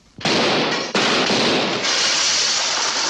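Loud gunshots burst out suddenly, a sharp crack followed by a second blast, then a dense, sustained crackling roar of noise that carries on without any talking.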